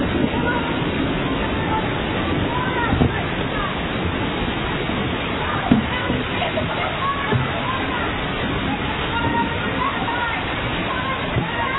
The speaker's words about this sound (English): And a great windstorm arose, and the waves were breaking into the boat so that the boat was already filling.